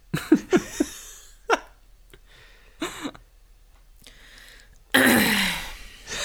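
A woman clears her throat several times in short, raspy bursts with pauses between, ending in one louder, harsher rasp near the close. No one speaks.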